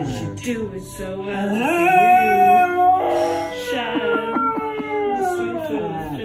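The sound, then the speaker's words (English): A dog howls in long, wavering, rising and falling notes along to a song playing in the background, its voice swelling loud throughout. “So this is his dog.”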